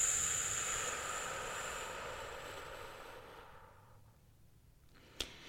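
A long, slow, deliberately loud exhale of about six seconds during a deep-breathing exercise, a breathy hiss that gradually fades, ending with a brief faint click. No one speaks.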